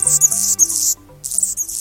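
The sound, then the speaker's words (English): A male Anna's hummingbird sings a thin, buzzy, high-pitched scratchy song in two bursts separated by a short pause, fairly loud over a faint low background hum, on a chilly February morning near Seattle with the temperature below 40 degrees. “On a chilly February morning near Seattle, with the temperature hovering below 40 degrees, a bird is singing lustily. And not just any bird. It's a hummingbird, a male Anna's hummingbird, whose throat and crown flash iridescent rose.”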